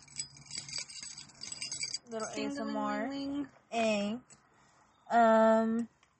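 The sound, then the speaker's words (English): Metallic keys jangle and rustle inside a small pouch carried within a purse for a couple of seconds, fairly quiet, followed by a person speaking in short bursts. “I just carry my little pouch within a pouch. I always got my keys.”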